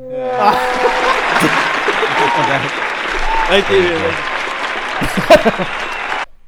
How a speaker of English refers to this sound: give him a clap.